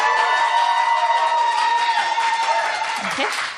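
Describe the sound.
Loud, sustained applause from an audience voting for the winner of tonight's debate, a dense wash of clapping mixed with cheering and raised voices that stays steady before thinning slightly at the end.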